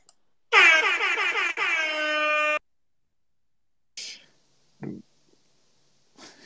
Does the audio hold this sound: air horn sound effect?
yes